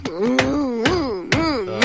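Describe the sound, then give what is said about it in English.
A head bangs against a display case holding a very rare Mary Worth comic, in a steady series of four or five sharp knocks, each landing about half a second apart, while a voice keeps up a wavering, tuneless moan underneath. “excuse me, no banging your head on the display case, please.”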